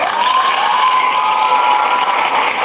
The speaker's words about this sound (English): Get some applause, hey.